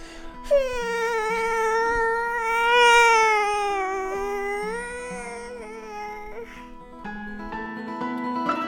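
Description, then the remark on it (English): A toddler lets out a long, loud, wavering wail in the background, holding it for several seconds before it breaks off, followed by a few shorter whiny sounds. “You might have heard Evan's toddler making noise in the background there.”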